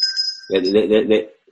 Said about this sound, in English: There's your bell.